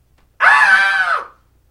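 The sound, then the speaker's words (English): A single loud, sustained scream from a movie bursts in suddenly, holds for nearly a second at a high shrill pitch, then trails off, with silence before and after and no talking. “We usually do our favorite lines from the movie, but honestly, the only ones are Static and Screaming and, well...”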